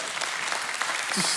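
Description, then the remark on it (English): A church audience claps steadily, a dense, crackling wash of many hands that stays fairly loud and even throughout the brief moment, with no voices breaking through. “I hope you'll clap at some point during this thing.”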